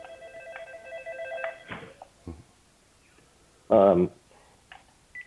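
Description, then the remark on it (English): A phone rings with a steady electronic tone for under two seconds, moderately loud, followed by a few clicks and a brief louder burst of voice. “The your phone's gone there. Sorry about that.”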